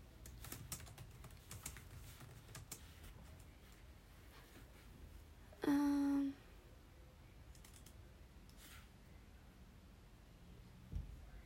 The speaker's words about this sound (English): Nah, I tried typing in keywords, can't find it.